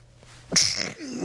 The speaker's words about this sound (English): I don't think I've ever sneezed on the program before, but we need a sneeze button to cut me out here.